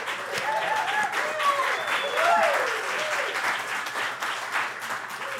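Audience applause for the guitarist after a live song fills the whole stretch, a dense, steady clatter of clapping at an even loudness, with a few rising and falling cheers and whoops woven through it.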